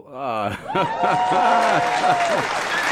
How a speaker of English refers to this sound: Oh my God. Yo, you got claps in the other studio.